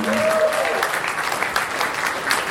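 A crowd applauds steadily, a dense wash of many hands clapping at an even loudness throughout, with a brief tonal whistle-like sound near the start.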